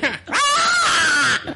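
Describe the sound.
A person imitates an eagle's screech with a loud, sustained, high-pitched shriek lasting about a second, preceded by a brief vocal sound.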